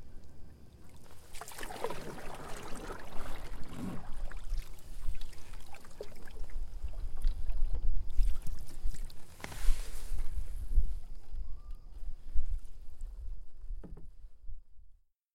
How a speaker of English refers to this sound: Right now we're right in the center of the Wisconsin River. We've been paddling for about 40 minutes